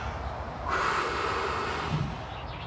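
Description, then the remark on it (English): A person takes the deepest breath they can and breathes out as long as possible: a deep, airy breath rushes in and out, a steady hiss lasting over a second before fading, with no talking. “Take the deepest breath you can do and breathe out the longest you possibly can on the count of three.”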